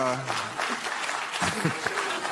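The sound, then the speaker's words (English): An audience claps steadily throughout Bill Maher's commentary on reparations, a dense, even wash of applause with a voice briefly audible over it at the start and again midway. “Let's see who's clapping now.”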